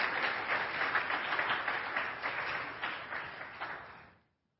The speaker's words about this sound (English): You can keep clapping. Come on. They take a little while. They're taking their time.